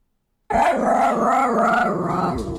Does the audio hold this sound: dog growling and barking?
yes